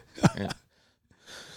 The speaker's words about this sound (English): Well, I thought you put the cough right into the mic. I was like, oh. I was going to. I got this lingering cough that's been around like 3 or 4 weeks. I feel fine. It's just an annoying fucking cough.